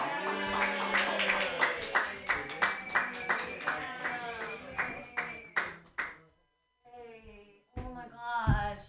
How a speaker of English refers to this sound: All right, keep clapping for me and my new joke.